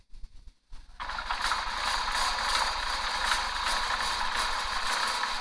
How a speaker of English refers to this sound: Okay, tell me what it is. A hamster wheel. What? A hamster running on a wheel.